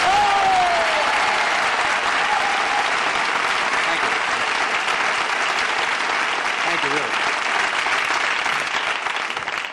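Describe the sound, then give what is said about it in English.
Loud, sustained audience applause at the Saturday Night comedy show fills the whole stretch, a dense steady wash of many hands clapping that never lets up, with faint voices barely audible underneath. “Quite seriously, and that is the applause.”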